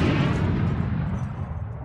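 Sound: explosion boom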